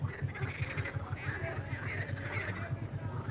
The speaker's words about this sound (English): Wow. It's not often you leave a nightclub to the sound of frogs. That's what's happening right now. Weird experience this is. I can hear some banging speakers from a venue I've just been to in unpronounceable town, and some frogs.